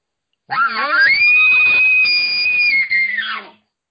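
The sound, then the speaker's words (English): An imitated elk challenge bugle: a loud, raspy rise that climbs into a long, piercing, shrill whistle held for about two seconds before dropping away abruptly, with no talking. “So this is a challenge bugle, and the key to it is it's short, it's aggressive, and then it hits that high shrill note”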